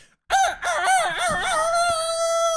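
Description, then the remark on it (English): A rooster crows a single loud cock-a-doodle-doo, starting with a few warbling, wavering notes and ending in a long, steady, high-pitched held tone that lasts about two seconds. “I preface it with a cock-a-doodle-do.”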